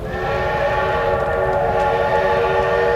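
A train whistle blows steadily over the low, rumbling roll of a train in a promo for the NBC TV series Super Train, sustained and fairly loud for the whole stretch with no voices.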